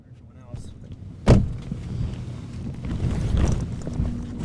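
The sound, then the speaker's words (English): Low engine rumble fills the cabin of a car, heard from the back seat, broken by a sharp thump early on, with faint muffled voices in the background. “And I awkwardly sit in the back of the car, just kind of hanging out as they catch up.”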